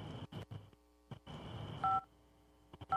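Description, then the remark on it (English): Two short electronic phone beeps, like dual-tone dial signals, sound about a second apart as voicemail cuts off a phone call, after bursts of rough, muffled noise and shuffling, with no talking. “Hey, your voicemail cut me off.”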